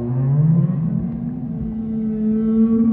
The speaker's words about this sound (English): The sound comes again, clearer this time in the water. I recognize it now as whale song, but a warped version of it I could never have dreamed up. It was both enchanting and ghoulish, as though the whale were a ghost